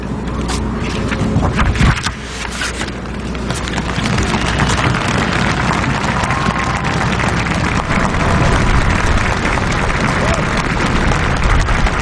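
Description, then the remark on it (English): Polite applause from a crowd of hundreds of thousands at the end of a woman's poetry speech: a dense, even patter of many hands clapping at a steady level throughout, without cheers or shouts rising above it. “That's what I would call a bit of polite applause.”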